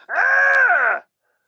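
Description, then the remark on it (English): A person vocally imitates a singer's screech: one sustained, loud, strained high-pitched wail lasting about a second, holding steady before cutting off abruptly into silence. “Oh, yeah, I love when he does that, like, screech thing.”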